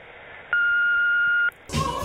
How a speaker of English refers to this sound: Leave a message after the beep.